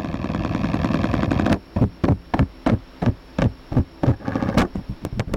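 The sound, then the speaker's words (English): A male spider's mating call, made by tapping its legs on the ground and recorded with a Doppler laser vibrometer that turns its vibrations into sound: a dense buzzing drone gives way to a series of sharp, rhythmic taps, roughly a dozen percussive knocks in an uneven, staccato pattern with no voices. “This is the spider's mating call.”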